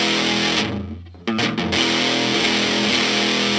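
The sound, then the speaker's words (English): A heavily distorted electric guitar chord rings out loud, dips briefly, then is struck again and held as a thick, fuzzy, sustained roar with no voices. “How about just like flat out dirt?”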